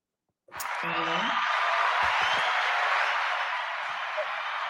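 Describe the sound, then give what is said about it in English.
A round of applause breaks out suddenly and holds steady as a dense, even wash of clapping for about four seconds, with a brief vocal whoop near the start. “Oh, we got to give a round of applause for that.”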